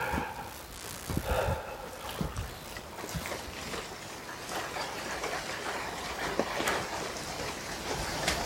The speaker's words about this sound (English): Can you hear the rain?